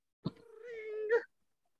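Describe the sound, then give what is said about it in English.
A single long, drawn-out cat meow, steady and tonal with a plaintive quality, swelling slightly louder just before it breaks off, followed by silence. “Oh wow. Wow, she's angry.”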